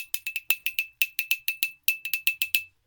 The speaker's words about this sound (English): That was a pencil on a cup. What do you consider to be the instrument there? The cup or the pencil? Well, I think it's the cup.